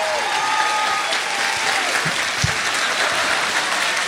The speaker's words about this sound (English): Thank you. Stand up again. Another big round of applause.